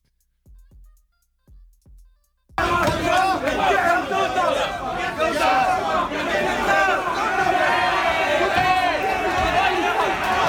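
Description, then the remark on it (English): A few soft low thuds, then a sudden loud wall of commuter crowd chatter at a train station during the peak-hour commute to or from work, with many people in suits holding briefcases and in retail uniforms: dense, overlapping voices babbling continuously with no single speaker standing out. “So it's obviously a commute either to work or from work and in the peak hour because there's a lot of people on the station, right?”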